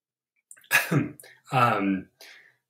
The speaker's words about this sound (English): And, you know, sorry guys, I swear I thought I was going to sneeze.